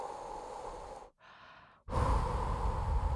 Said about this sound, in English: I'm breathing into a paper bag.